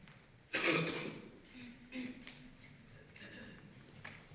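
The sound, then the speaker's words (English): A sharp, loud cough bursts out near the start, followed by a few softer coughs and throat-clearing sounds from other audience members scattered around. “I'm getting everyone else coughing now, aren't I?”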